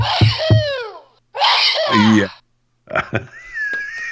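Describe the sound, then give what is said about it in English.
A single loud sneeze bursts out in a sharp, breathy rush, with brief laughing and vocal sounds just before and after it. “Bless you.”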